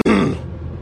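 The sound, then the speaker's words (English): A single short, gruff throat clearing, fairly loud, a rough burst that fades quickly into quiet background. No one speaks. “And looks like I need to clear my throat as well before beginning.”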